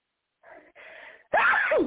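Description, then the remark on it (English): A single loud sneeze: two soft breathy intakes build up, then a sharp explosive burst with a tonal, voiced edge, heard on its own with no talking. “Excuse me, about to sneeze.”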